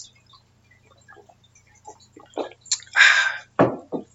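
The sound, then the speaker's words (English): Someone takes a drink of water: small taps and clicks of a cup or bottle, then a couple of louder close-up gulping, sipping sounds, with no talking. “Let me get a drink of water and let me get into this so we can talk about this and understand really what's happening.”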